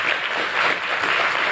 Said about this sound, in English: I'm going to ask you to do me a favor this morning. Would you just give a round of applause right now, everybody? Go ahead.